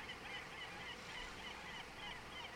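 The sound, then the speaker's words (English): A flock of birds around a trash barge calls steadily, their honking cries overlapping in a busy chorus over a constant wash of background noise, with no one speaking. “I'm kind of just content to dangle my feet, over the side of this barge here and just look at the birds for a spell.”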